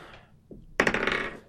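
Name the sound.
die being rolled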